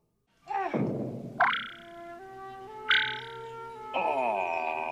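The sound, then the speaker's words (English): A cartoon frog jump effect from a Muppet film: a low warbling croak, then three springy sproing sounds, each a sharp rising twang that rings on as a sustained wobbling tone. Fairly loud, and no talking. “I love the sound effect for when they're jumping. It's like just a real good sproing.”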